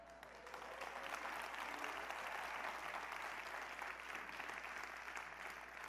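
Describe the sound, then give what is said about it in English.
Sustained applause from a church audience, including from the front row, after an announcement, a dense steady wash of many hands clapping at an even, fairly loud level for the full stretch with no voices standing out. “Now, there are several miracles around this, including the fact that his mother clapped on the front row.”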